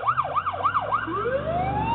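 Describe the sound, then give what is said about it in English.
A fire truck siren warbles in quick up-and-down cycles, then shifts into a long rising wail, loud over a low engine rumble, with no one talking. “He turned his sirens on just there for Donald Trump.”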